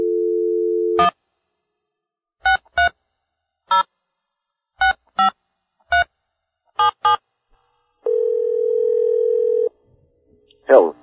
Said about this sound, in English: and we're going to give him a call right now on the phone.